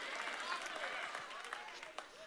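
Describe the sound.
An audience claps steadily, a dense wash of overlapping hand claps lasting a couple of seconds, with scattered crowd voices and cheers mixed in, clapping to celebrate the Warriors basketball team beating the Rockets.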